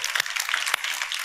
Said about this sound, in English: What a great, beautiful, amazing miracle that we are sitting in today. Come on, give Jesus another good hand clap.